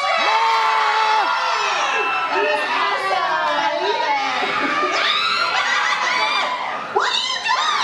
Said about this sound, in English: You guys scream too. All right, me, …. Here we go. Everybody scream along.